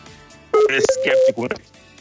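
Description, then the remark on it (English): A phone call is interrupted and breaks up, with a steady electronic dialing tone and garbled, clipped voice fragments mixed in, fairly loud for about a second before fading to quiet line hiss. “Unfortunately, we have an interruption to the phone call.”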